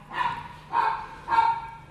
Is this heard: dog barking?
yes